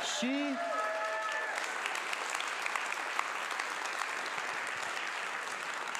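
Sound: audience applause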